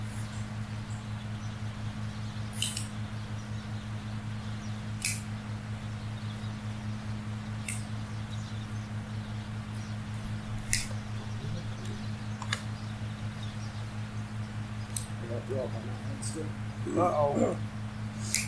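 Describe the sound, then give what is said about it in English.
A cutter is opened and closed repeatedly, giving sharp, sticky clicks every few seconds over a steady low electrical hum, with faint murmuring near the end. “It's sticky, huh? It is sticky. What's sticky? That cutter.”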